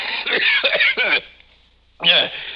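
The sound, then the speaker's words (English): A man with a cold coughs in a quick cluster of three or four harsh, throaty bursts, pauses briefly, then lets out one more rough cough, slightly muffled. “Excuse me, Montresor. I have a cold.”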